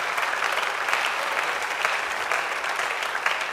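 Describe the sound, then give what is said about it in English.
A church audience breaks into steady hand clapping for visiting ministers and the sisters who prepare the meals, a dense, continuous patter of many hands at an even loudness throughout, with no voices standing out. “Go ahead and give them a hand clap.”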